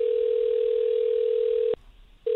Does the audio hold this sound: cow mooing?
no